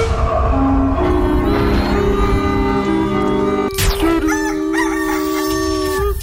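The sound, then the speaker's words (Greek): A rooster crows loudly, one long drawn-out call followed by a second crow after a brief sharp break, with no talking. “και τώρα θα λαλήσει το κοκόριτσο καφέ Morning Show”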